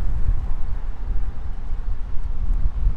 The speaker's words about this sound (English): Man, it is windy. Hang on, just let this wind kind of calm down for a second.